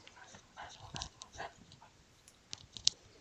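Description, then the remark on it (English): A dog named Leo pants in quick, breathy huffs, soft and fairly quiet, with a few faint clicks and mouth sounds mixed in and no talking. “Did you hear him panting?”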